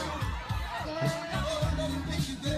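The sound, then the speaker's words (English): An audience shouts and whoops over a steady pulsing beat, voices overlapping in a dense, loud wash of cheering and screaming. “The people screaming in the audience.”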